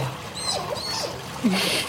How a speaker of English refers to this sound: That is a sea otter, a baby sea otter, actually, at the Monterey Bay Aquarium.